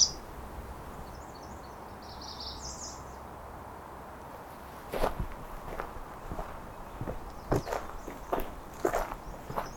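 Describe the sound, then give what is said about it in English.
Faint, high, thin notes of an American Redstart song sound in the first few seconds, followed by crunching footsteps over a steady outdoor background. “With some American Red Start.”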